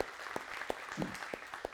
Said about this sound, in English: Single parents, I honor you. I respect you. Can we give every single parent a hand clap in the room? Wow.